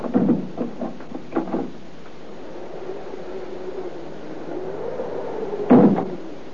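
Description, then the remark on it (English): A few sharp clicks and rattles as a key is turned in the lock, then a door, pushed on one of its panels, slowly swings open with a long, wavering creak that ends in a dull thump. Moderately loud, with no one talking. “After a moment, he applied pressure to one of the door panels, and the door opened, and he went in.”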